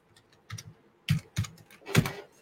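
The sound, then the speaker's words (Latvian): Quick bursts of computer keyboard typing as someone types "house insurance", a few separate clusters of clicky keystrokes with short pauses between them and no talking. “Viens klikšķis, house vai home insurance, tu var rakstīt house insurance,”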